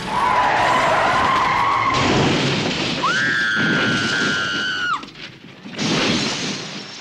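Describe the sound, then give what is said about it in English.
A car swerving to avoid a child skids with loud, sustained tire squeals over a roaring engine and road noise, the sharpest screech lasting about two seconds before a brief drop and the rumble returning. “she screams about it and he has to swerve the car off a cliff to avoid hitting this kid”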